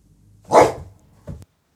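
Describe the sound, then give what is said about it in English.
A dog named Apollo lets out one loud bark followed by a shorter, softer woof, with quiet in between and no talking. “Before we jump into this podcast, my dog, Apollo, has something he would like to say.”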